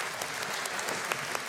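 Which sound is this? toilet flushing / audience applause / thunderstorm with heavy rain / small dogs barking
audience applause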